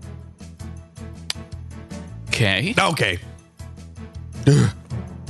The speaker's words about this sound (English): Oh, uh-oh. My eyes are leaking. I can't read the text. No, really? I sneezed so hard.